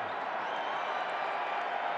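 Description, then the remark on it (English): A large arena crowd at a Utah Jazz basketball game whistles, cheers and applauds steadily as Jimmer Fredette checks back into the game, a dense, continuous wash of noise that holds at an even, moderately loud level throughout. “Jimmer Fredette checks back in the game to the whistles and cheers and applaud and all sorts of things.”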